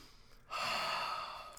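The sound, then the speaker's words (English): A single heavy, satisfied exhale after gulping Yuengling Light Lager beer breathes out after a brief quiet moment, a loud airy rush that lasts about a second before trailing off. “You hear that heavy breath?”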